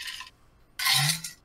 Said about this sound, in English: Had to get a drink of water there.